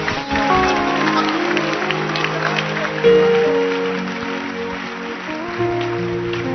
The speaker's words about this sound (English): Clap your hands.